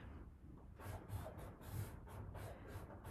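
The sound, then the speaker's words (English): A Sharpie marker scratches across paper in a series of short, quick strokes, fairly quiet, with no one talking. “Mine might be making noise because I'm using a Sharpie on paper.”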